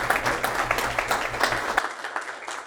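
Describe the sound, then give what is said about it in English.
Audience applause in Central Texas welcoming a real estate investing speaker fills the air, a dense wash of many hands clapping steadily at moderate volume, with a low hum underneath that drops out as the clapping thins toward the end. “Will you guys all please give a very, very warm round of applause”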